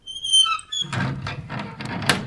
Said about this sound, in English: Just gonna open the door.